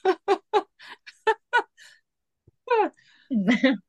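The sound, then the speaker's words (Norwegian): A series of short, breathy voiced gasps builds up, then after a brief pause a sharp, loud burst erupts, like a sneeze with a noisy, forceful release. “Der kom det en nys jeg kjente han kom.”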